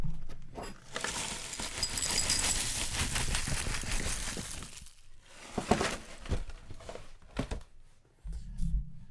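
Signature Kitchens Raisin Bran, the Albertsons store-brand cereal, pours out of a crinkling plastic bag in a steady rustling, pattering rush, pausing briefly midway before a few shorter shakes and scattered taps finish it off.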